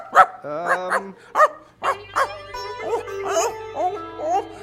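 A dog barks repeatedly, a quick run of loud, short, slightly whiny barks with brief gaps, over a faint low hum in the background.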